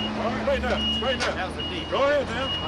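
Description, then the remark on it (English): A heavy truck rolls over fresh asphalt in a pothole, using its tires to tamp it down, with a low idle-like drone and a steady high tone ringing over it while people talk intermittently above the engine noise. “They use the truck tires to tamp down the asphalt.”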